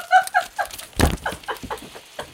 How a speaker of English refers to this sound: That was loud. Oh, no. Confetti cannon.